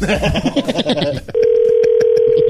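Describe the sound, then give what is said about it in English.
Brief chatter gives way to a steady, loud telephone dial tone that holds to the end, with faint rhythmic clicks running underneath like a number being dialed, as a veterinarian is called on air. “So we're going to call him on air and put him on the spot.”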